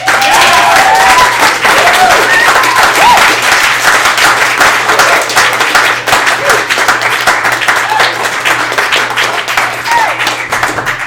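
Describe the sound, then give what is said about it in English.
Loud, sustained applause from a debate audience voting for a debate winner, a dense wash of many hands clapping for about eleven seconds, with a few whoops and cheers rising above it and a slight easing toward the end. “If you believe that Nick Wehrlein was the winner in this debate, please applaud now.”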